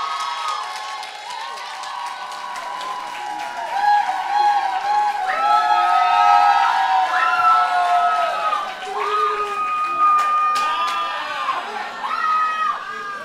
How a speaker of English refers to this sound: Okay, next up, we've got something that hasn't been around for a long time. But it's coming. It's been resurrected. I want you to clap your hands and welcome the Word Star!